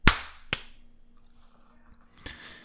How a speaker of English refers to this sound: Okay. So we're going to stop it here. Give it a clap.